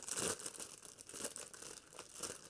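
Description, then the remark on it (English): Crinkly packaging being unwrapped, a steady run of sharp, bright crackling and rustling with louder crunchy bursts every half second or so, and no one speaking. “Let me unwrap these really, really quick, and we'll switch over to the media section.”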